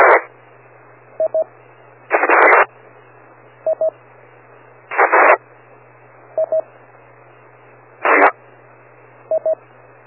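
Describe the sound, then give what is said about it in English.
Repeated bursts of radio static, about four times, each followed by a quick pair of electronic beeps, over a faint steady hum, as a transmitter keeps keying up to reach a repeater. No one speaks. “and I heard some station trying to get in the repeater.”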